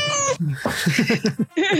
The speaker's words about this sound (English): It's getting more elaborate. I swear every time it's getting more elaborate. It's the same one. I think you're just missing bits when I played it the last time. I don't remember the second meow at the end